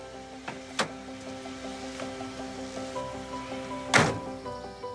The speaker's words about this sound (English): Ooh, sweetie, open the door. Get the door. Open the door, sweetie.